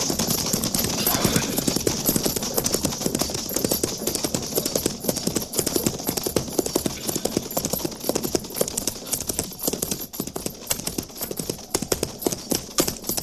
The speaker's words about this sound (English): Captain, single rider approaching. Yeah, I see him. Looks like Gorse.